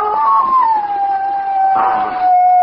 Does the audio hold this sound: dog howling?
yes